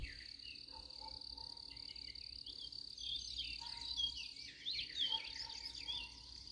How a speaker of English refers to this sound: The sun hasn't come across the sky at the farm yet. But the birds are awake. And the crickets.